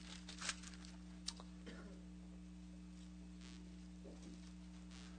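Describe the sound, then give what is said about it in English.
Scattered soft rustling of Bible pages being turned by a church audience looking up John 15, faint, with a few brief crisp flutters over a steady low electrical hum and no talking. “It's a great joy for any preacher to hear rustling pages.”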